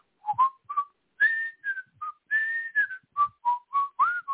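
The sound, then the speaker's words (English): Someone whistles a short, bright melody, a quick run of clear pitched notes with brief gaps between them, some sliding slightly, and no talking. “Anyway, I can't believe I can whistle like a man.”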